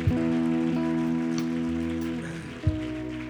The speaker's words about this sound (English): Give Pastor Hayes a hand clap and thank him for a good word here today.